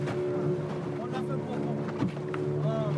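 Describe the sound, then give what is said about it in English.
A small boat's engine drones steadily as the boat bounces heavily on waves in a bay off the island of Anjouan, waves slapping and thudding irregularly against the hull, a few sharp knocks standing out, with a voice briefly audible over the noise. “Okay, the boat is bouncing quite heavily now, and I'm getting a little bit scared. You can probably hear it on the hull.”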